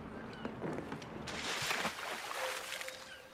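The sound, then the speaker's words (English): Oars splash and swish through water in a steady rhythm as a boat is rowed because its motor won't work, with a soft wash of water and light wind noise behind; no voices. “Now they have to row it.”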